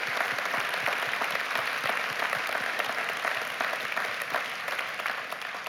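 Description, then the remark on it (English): An audience at Fellowship applauds steadily for several seconds for two men stepping off after serving 14 or more years, a dense, even wash of many hands clapping, with no break or clear voices. “You can clap for that.”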